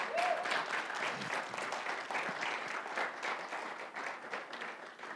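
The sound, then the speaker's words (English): A crowd claps steadily in praise, a dense, sustained wash of many hands that holds at an even, fairly loud level for several seconds, with a brief voice-like tone at the start. “If you receive today, get a lot of hand clap of praise.”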